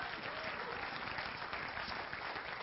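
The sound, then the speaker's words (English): A crowd claps for God in a dense, continuous wash of applause that holds a fairly even loudness throughout, with no voices standing out above it. “Come on, give God one more big applause tonight.”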